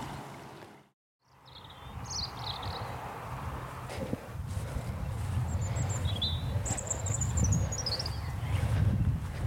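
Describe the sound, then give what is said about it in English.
A dense, continuous chorus of hundreds of common toads calling in spring at spawning pools left isolated from the river as the water went down, a low churning mass of croaks that swells slightly, with occasional high bird chirps overhead and no talking. “pools swirled out, isolated from the river as the water went down, and these became breeding grounds, spawning grounds for hundreds and hundreds of toads, and it was a fantastic spectacle.”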